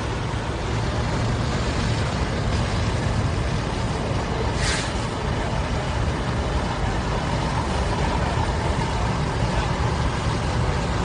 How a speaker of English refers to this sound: Looks like we've got Rocky Ford on scene. Here comes another ladder truck.